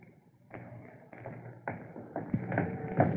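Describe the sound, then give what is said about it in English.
A furnace control knob is turned in a series of crisp clicks, about six ratcheting snaps spaced roughly half a second apart over a low background hum. “Where is that control? Here it is. I'll just turn it this way.”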